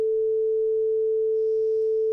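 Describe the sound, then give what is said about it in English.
A steady, pure sine tone at concert A, 440 hertz, holds at one unwavering pitch for about two seconds before cutting off abruptly with a small click. “And then here's A at 440 hertz.”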